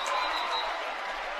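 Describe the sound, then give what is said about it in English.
A basketball arena crowd comes to its feet, cheering after an intentional foul with 22 seconds left sends a player to the free throw line. A steady, dense roar of many voices and clapping stays at an even level throughout, with no single voice standing out. “The crowd coming to their feet, and Phillips going back to the free throw line.”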